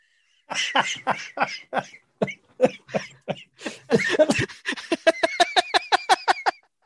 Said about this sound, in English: God, I have to turn the mic off because I was coughing for a second.